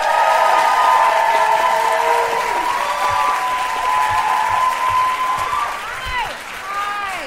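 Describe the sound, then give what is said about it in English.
An audience bursts into sustained applause with whoops and cheers as Mae Martin is welcomed to the stage as the guest, a dense steady roar of clapping that holds loud for several seconds before tapering slightly, with high shouted cheers rising over it. “Okay, please join me in welcoming the stage, Mae Martin. Give it up for Mae.”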